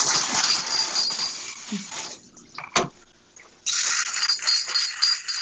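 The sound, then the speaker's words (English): Dishes clatter and scrape continuously while being washed, a busy run of bright clinks and rattles that pauses briefly midway, with one sharp clack, then resumes. No one speaks. “Sorry, if you hear any background noise, it's me. I'm being dishes, so...”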